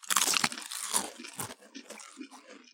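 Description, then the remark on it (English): Loud crunching of snack chips as two people bite in together after a countdown, with sharp crisp bursts in the first half second and around one and one and a half seconds, then softer chewing crackles trailing off. “All right, are we crunching off?”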